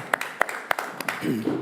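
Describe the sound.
A few scattered, uneven hand claps from an audience ring out sharply, about half a dozen in all, applauding the person who made a video, before a voice starts speaking near the end.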